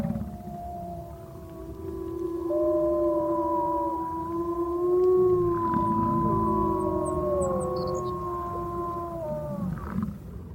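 A chorus of wolves howling together in Wood Bluff Buffalo National Park, several long wavering tones overlapping and sliding in pitch, steady and fairly loud for about ten seconds over a low rumbling background, with no talking.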